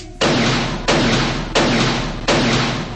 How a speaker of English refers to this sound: Waters shot him cold.